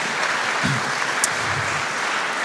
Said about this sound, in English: Belle, come up and give her a big round of applause. Great to have you here.